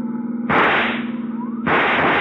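Two loud, sharp rifle shots about a second apart, fired from a pursuing car at a fleeing car's tire during a road chase, each cracking sharply and then trailing off into a long echoing decay over a steady low engine drone.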